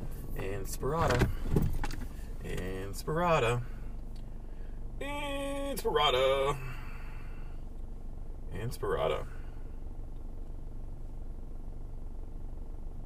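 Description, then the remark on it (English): The speaker's own car engine runs roughly with a steady low rumble and a slight rattle that continues throughout, while a person talks over it in short bursts. “My car sounds fantastic. Can you guys hear that?”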